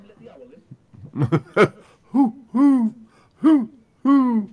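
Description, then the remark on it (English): A voice imitates an owl with a short run of hooting calls: a few quick choppy hoots, then four drawn-out, wavering hoots at a steady pace, fairly loud. “Somebody let the owl in.”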